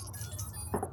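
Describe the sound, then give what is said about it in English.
A short, bright rattle of dice rolled for a power roll, clattering together in a quick burst of hard clicks lasting a fraction of a second over a steady low hum, with no voices. “So go ahead and roll your power, and I'll roll Shannon's.”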